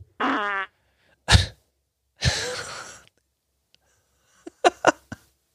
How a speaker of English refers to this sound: And oh, that was a little burp. Not sure if you heard it.